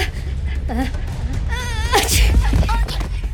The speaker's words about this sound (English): sneezed, and the spell was broken.